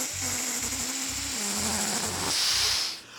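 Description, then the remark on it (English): The hot air balloon Lucille deflates on the ground after crash-landing, its fuel empty from a leak: a steady, loud hiss of air rushing out over a low droning tone that slowly drops in pitch, with a soft rhythmic pulsing beneath, tapering off at the end. “Why is she deflating?”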